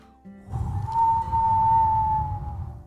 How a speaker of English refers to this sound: As the wind howled,